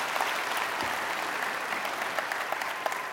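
A crowd claps steadily and densely, the applause sustained at an even, fairly loud level throughout with many overlapping hand claps and no voices standing out.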